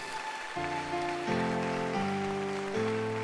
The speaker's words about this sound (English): Can we clap our hands for this choir members?